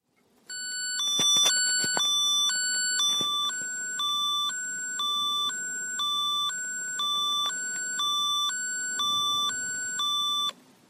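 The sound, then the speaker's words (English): A Medtronic implantable defibrillator alert: a steady electronic tone that alternates between two pitches about once a second for ten seconds, with a few sharp clicks near the start and no talking. “The different manufacturers have different sounds and different tones, and I'll give you a sample of some of them now. This is a Medtronic one.”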